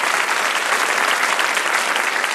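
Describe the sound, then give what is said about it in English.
A crowd applauds both teams at the end of a debate, many hands clapping in a dense, even wash of sound that stays loud throughout with no voices breaking through. “I'd just like to give them a round of applause.”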